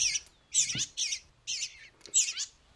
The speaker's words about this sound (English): So these are two eastern bluebirds. Their parents were killed by house sparrows.